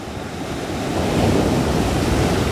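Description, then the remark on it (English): Ocean waves break close to the shore at Mara Beach, Carmel-by-the-Sea, at high tide, a loud, continuous wash of surf that swells and stays steady, with some wind buffeting the microphone and no voices. “Waves break too close. Well, it could be the tide too. We're at high tide, so.”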